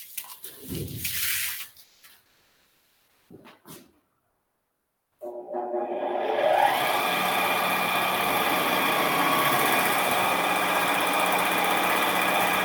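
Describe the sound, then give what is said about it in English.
A couple of brief knocks and a silence, then a primer spray gun starts up and runs continuously while a spray pattern is set up, a loud, steady mechanical drone with a humming, whining motor tone to the end. “And yeah, we'll fire up the primer here, and we'll show you how we set up a spray pattern on this guy as well too.”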